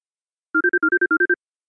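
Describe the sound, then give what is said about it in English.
A phone rings for an incoming call with a bright electronic ringtone, a quick run of nine short beeps grouped in threes, clear with nothing else around it. “I received a phone call from a guy”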